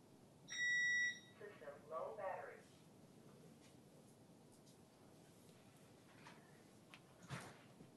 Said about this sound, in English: Hang on just a second. My alarm system is being annoying lately.